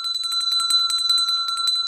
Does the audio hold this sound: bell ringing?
yes